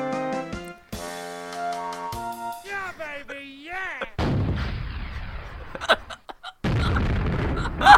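A few electronic tones and warbling synth sweeps give way to loud, rumbling explosions, a sustained barrage of heavy blasts with a brief pause before another roaring burst.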